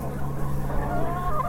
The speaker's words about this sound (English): That's a proud rooster